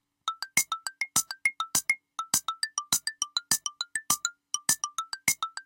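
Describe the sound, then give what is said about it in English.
A bright, fast prize-time jingle of chiming notes bouncing up and down in a quick steady rhythm, punctuated by sharp percussive hits, with no voices over it for about six seconds. “It's prize time. Chime in on the cannabis question.”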